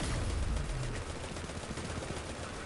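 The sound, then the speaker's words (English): Rapid bursts of video game gunfire from the Skyburner's Oath scout rifle crackle continuously over a dense, noisy battle soundscape with heavy low rumble, fairly loud, with no speech. “Skyburner's Oath, just because like shooting Kallus with it. It's such a good gun.”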